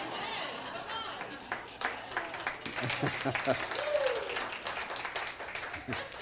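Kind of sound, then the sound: crowd, audience applause and shouts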